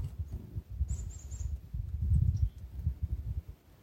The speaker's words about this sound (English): Surrounded by chickadees this morning. Nuthatches.